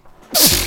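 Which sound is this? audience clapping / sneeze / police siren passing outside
sneeze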